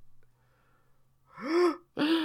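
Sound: gasping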